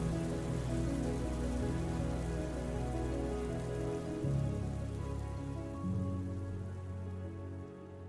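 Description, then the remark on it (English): A steady rainstorm pours down for several seconds, a dense, continuous hiss of drops pattering on a surface with a low, rolling undertone and no voices. “Obviously, this storm is a metaphor, but sometimes the stress we experience from the climate crisis can become all too real.”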